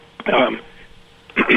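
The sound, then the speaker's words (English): Two short, harsh bursts of coughing or throat clearing, fairly loud, separated by about a second of near quiet, with a muffled, narrow-band quality like a phone or radio line. “If I had a cough button, I would have pressed it.”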